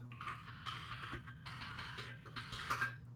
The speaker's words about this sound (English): That was definitely your keyboard, not my keyboard. I heard it was extra echoey. Oh, yeah, it's possible. There's probably some compression or something that's going on.